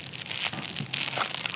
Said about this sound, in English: Here's a crinkly baby toy.